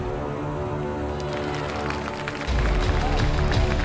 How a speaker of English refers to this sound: Thank you. Although I would love to bathe in your adoration and applause, we got to get to it.